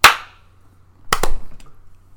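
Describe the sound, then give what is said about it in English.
Hand claps made on a countdown: a single sharp hand clap, then about a second of quiet before two quick claps in close succession, loud and crisp with short ringing tails. No one speaks. “I didn't really hear a clap from either one of you. Did you both clap?”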